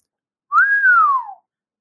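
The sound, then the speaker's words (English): A person whistles one clear, sustained note that swoops up in pitch and then glides slowly back down, lasting just under a second. It's fairly loud, with no talking. “Can you just like give our listeners a little whistle just to show us what they're missing?”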